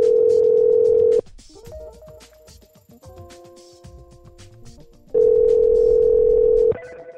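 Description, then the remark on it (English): A loud, steady telephone dial tone breaks off into a quick run of short keypad dialing beeps as a phone call is placed, then the steady tone returns briefly before ending in a click. “Okay, let's make another phone call.”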